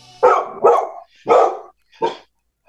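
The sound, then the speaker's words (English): A dog barks four times in quick, uneven succession, each bark loud, with short silent gaps between them and no talking. “Put that damn dog outside.”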